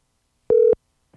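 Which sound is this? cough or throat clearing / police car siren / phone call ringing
phone call ringing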